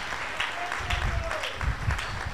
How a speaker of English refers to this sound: I think it's a good place to clap your hands together for Jesus.